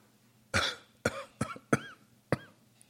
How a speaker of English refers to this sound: Oh, I can't hardly cough without hurting that.